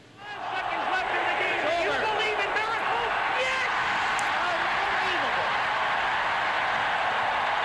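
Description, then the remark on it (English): A large arena crowd roars at a steady, loud level after a quick swell at the start, counting down the final 5 seconds of the 1980 Olympic 'Miracle on Ice' medal game against Russia, many voices shouting together in a dense, unbroken wall of noise. “But the miracle on ice, this final 5 seconds, you know, the crowd is counting down, that shout, do you believe in miracles?”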